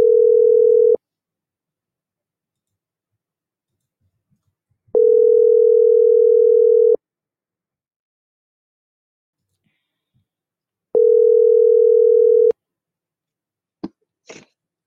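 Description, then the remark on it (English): A steady electronic telephone tone sounds in three long bursts separated by several seconds of silence while placing a call on another phone line, followed by a couple of brief clicks at the end. No one speaks. “So let me call her in the other line.”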